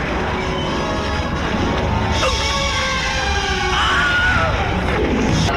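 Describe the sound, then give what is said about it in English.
Several short, shrill screams ring out in quick succession over dense, noisy movie-style background audio, each cry sweeping sharply in pitch: a compilation of film clips that all use the same stock Wilhelm scream sound effect. “Is it just a bunch of clips of people? Yeah, using? Of all of the times the effect was used.”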